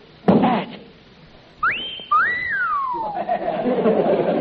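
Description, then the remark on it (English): A loud two-part wolf whistle, a quick rising swoop followed by a longer rise-and-fall glide, sounding from a strength-tester machine after the sharp thud of a strike, with background chatter underneath. “What was that? A wolf whistle.”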